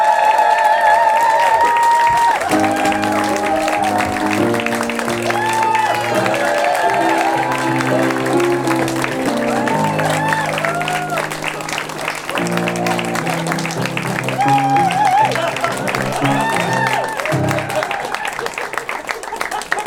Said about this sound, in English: okay, now it's time for us to bring out our adventurers. Please, a big round of applause for our adventurers!